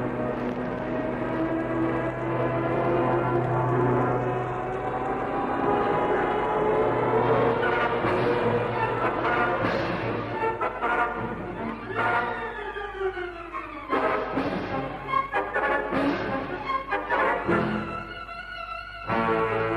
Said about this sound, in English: Michu and Haines hold their breath as the first plane sweeps down from the sky at the patch of elephant grass.